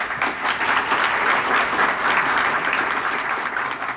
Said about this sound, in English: complex contrapuntal caper at the end was incidentally improvisatory and perhaps merits some additional applause.